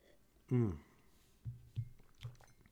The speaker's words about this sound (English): So let me take another sip and we'll get back to it.